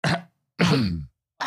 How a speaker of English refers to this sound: Has me actually coughing. Sorry.